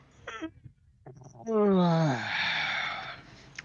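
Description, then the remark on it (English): Someone mimics a yawn with their voice: a loud, drawn-out groan that slides downward in pitch and trails off into a long breathy exhale, after a few faint short sounds. “And then he yawns again, and he starts rubbing his eyes.”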